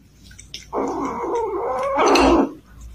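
A tiny, mean kitten growls in a long, low, rumbling snarl that swells louder and harsher toward the end, with no talking.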